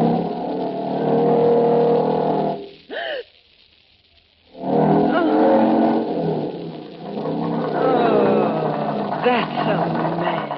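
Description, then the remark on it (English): A motorcycle ridden along a wire by the performer Lancaster revs loudly and steadily, its pitch rising and falling, cuts out abruptly for a second or two, then roars back up and keeps droning with some background commotion. “Watch him ride that motorcycle on nothing but a wire.”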